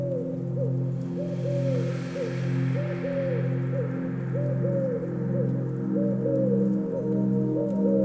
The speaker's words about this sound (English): In the distance, you hear a noise. Softly at first, but then it grows. An owl calls to you from the woods.